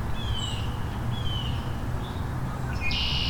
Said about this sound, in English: Red-winged blackbird.